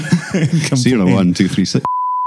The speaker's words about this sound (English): Do you want us to beep over the top of that? Maybe give the first three digits and beep the rest?